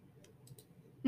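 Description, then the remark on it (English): A few soft, scattered clicks of typing on a computer keyboard over a low background hum, ending abruptly in a sudden louder burst of sound. “It's probably the worst listening experience for you guys when we're typing stuff in.”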